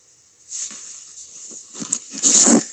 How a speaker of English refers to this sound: Hiya fellas, this week we're going to be listening to The Boiler. It's just going to be ticking over and it's by, well, the Baxi Boiler.